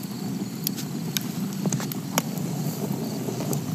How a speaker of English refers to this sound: It's a roaring fire.